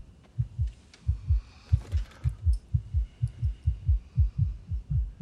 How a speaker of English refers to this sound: Why's your heart beating so fast?